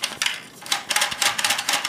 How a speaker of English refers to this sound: I'll tell you what, too. That is a fairly satisfying helicopter noise. That is a very good helicopter noise, actually.